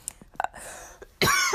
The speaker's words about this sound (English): excuse me if you guys heard that cough. My allergies are killing me the last few days.